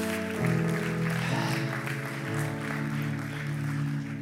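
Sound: audience hand clapping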